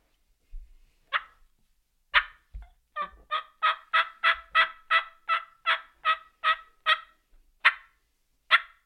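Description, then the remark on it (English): A long series of turkey yelps on a turkey call, a longer yelp rather than an assembly yelp: about a dozen sharp, evenly spaced calls with a few scattered clucks at the start and end, loud with no talking. “And then we may hit them with just our normal, somewhat long, I wouldn't call it an assembly yelp, but a longer yelp.”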